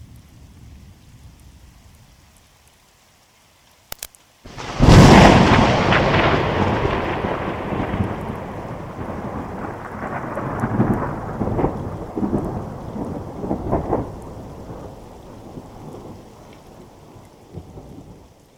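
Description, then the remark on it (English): After a few quiet seconds and a sharp crack, a loud thunderclap booms and rolls into a long, grumbling rumble over steady rain, slowly fading but lingering to the end. “The sky is getting really dark, and I'm starting to hear thunder.”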